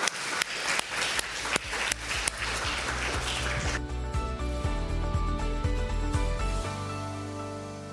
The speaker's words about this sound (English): Thank you so much for your amazing insights. It has been a varied and in-depth conversation in many ways. Could you please give a huge round of applause to our three members of the panel here?